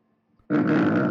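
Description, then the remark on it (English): A single loud, low, raspy grunting call from a pelican, from a YouTube video of pelican sounds and calls, breaking out suddenly after near silence and holding steady for under a second, rough-textured with no voices. “It's like low grunting. And like high-pitched barking.”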